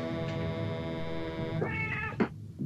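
A cat lets out one long, drawn-out, loud meow, its pitch wavering and rising toward the end before a brief sharp cry cuts it off. No one speaks.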